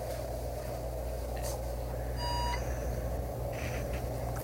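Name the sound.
beeping alarm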